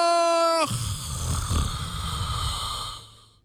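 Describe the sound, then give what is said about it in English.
A brief bright tone cuts off into a long, loud, rasping snore with a rough low rumble, heard alone and fading away toward the end. “Is that snoring or was that applause?”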